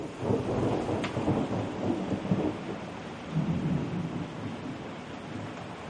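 A huge thunderstorm rolling in, in South Africa, with deep, rolling thunder rumbling on and off over a steady hiss of rain, loud, with no voices.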